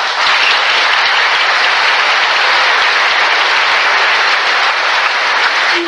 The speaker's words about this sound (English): If you would please hold your applause.